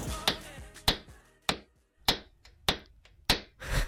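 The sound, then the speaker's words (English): A hammer sound effect played to open a radio segment called 'hammer time': about seven sharp, ringing blows struck at a steady, even pace, each with a short metallic decay. No voices are heard. “That would be a hammer, Tim. That would Didn't be a hammer like sound effect, because it is time for hammer time.”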